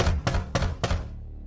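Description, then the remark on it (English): Heavy banging with full strength on a locked cabin door: four loud, evenly spaced thuds in quick succession, forceful, with no voices. “Help, you scream, banging on it with all your strength.”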